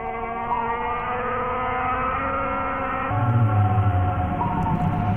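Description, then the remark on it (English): Long, sustained whale calls with rich layered tones that slowly bend in pitch, joined halfway through by a deeper, louder moan. The sound is continuous and steady, with no voices. “making clicks, grunts, thwops, snorts, and barks, and some haunting songs too.”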